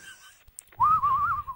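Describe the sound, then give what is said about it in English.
A wind sound effect rendered as a single wavering, whistle-like tone that rises in after a quiet start and holds loudly for about a second, over a low rumbling hiss. “That wind effect gets less windy every time I hear it.”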